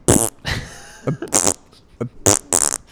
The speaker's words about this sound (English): Sir, excuse me, waiter, can you take these back? I didn't ask for these farts.